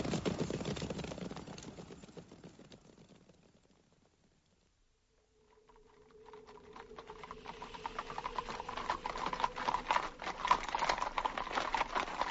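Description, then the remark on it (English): The hooves of a handful of weary horses carrying men clip-clop in a steady, dense patter that fades away to near silence, then returns and builds louder, joined by a low sustained drone, with no talking. “A handful of battle-scarred men on weary horses.”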